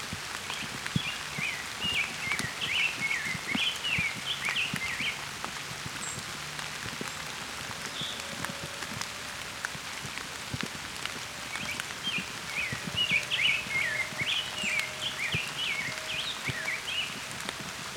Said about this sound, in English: As you can hear, it's raining a bit. But I've got a rose-breasted grosbeak here singing.